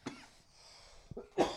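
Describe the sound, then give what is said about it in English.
A person coughs: a short cough, a pause, then a rough double cough at the end, the final burst the loudest. No one speaks. “I wish I had a cough button.”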